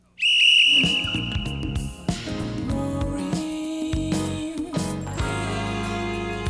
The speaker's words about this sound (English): Sound like a train whistle.